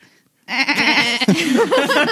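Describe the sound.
A loud goat bleat with a wavering, quavering tone, starting after a brief silence and continuing in a drawn-out series of shaky cries.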